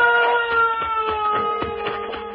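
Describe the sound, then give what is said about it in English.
A bell rings continuously, struck in a quick, steady rhythm of about eight to nine strokes, its bright metallic tone sustaining loudly between hits. No one speaks. “Do you hear that bell?”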